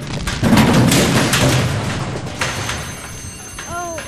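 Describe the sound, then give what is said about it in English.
A loud, booming house explosion bursts out early, followed by a long rumbling roar and crackling debris that slowly fades, with a brief ringing tone near the end. “Now that was quite a remarkable blast.”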